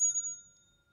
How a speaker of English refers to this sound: Let me get a bell.